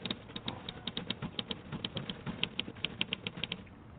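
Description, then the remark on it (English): Typewriter keys clack in a quick, steady run of sharp, fairly crisp strikes as someone writes, continuing for several seconds with no voices. “I'm writing, like you'll be, when you start punching those keys.”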